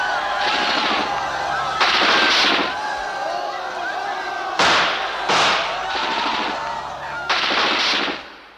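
Loud, sharp bangs burst out several times at irregular intervals over a playing song, sounding like gunshots or fireworks cracking close by above the music.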